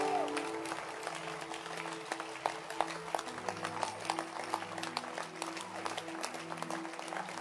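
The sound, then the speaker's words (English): An audience claps their hands together, a dense, steady patter of many sharp claps that continues throughout, with sustained low musical chords underneath. “Can you clap your hands?”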